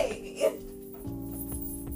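A dog makes strained, hacking cough-like sounds followed by a steady, high-pitched whimpering whine, fairly quiet and continuous over a couple of seconds.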